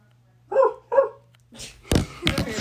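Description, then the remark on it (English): A dog named Toto lets out two quick barks in a row, followed by a burst of loud rustling and thumping noise. “Would you like to say something, Toto?”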